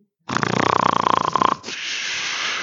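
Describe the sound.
A man does a loud imitation of snoring: one long, rattling, buzzing inhale with a whistly edge, then a softer, breathy exhale trailing off.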